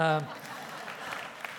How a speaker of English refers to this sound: So here's what happened in that game. Arkansas beats. Now you should be applauding.